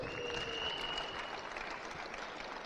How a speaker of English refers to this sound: Clap for him. He's a good sport.